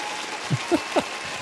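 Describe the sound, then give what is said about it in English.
A short burst of canned applause played from a soundboard, a steady hiss of clapping at moderate volume, with a few brief rising whoops or cheers poking through around the middle. “Where's my fucking applause? There you are.”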